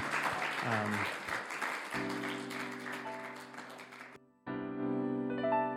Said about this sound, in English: I think we should give our terrific panel a round of applause for their sharing their perspective this afternoon.